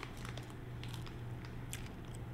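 Crunchy bites into a Milk Bar cornflake chocolate chip marshmallow cookie: a series of short, crackly bursts repeating irregularly over a steady low hum, with no voices.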